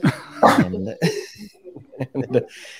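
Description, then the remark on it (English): Dogs bark and yip in a quick series of short bursts, the sharpest at the start, followed by softer whiny yelps trailing off. “Before we do that, though, a few words from our sponsors, the dogs.”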